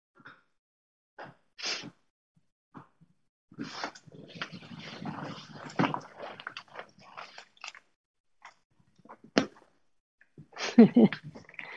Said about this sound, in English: Not including the dog chewing on his bone in my radical inclusivity.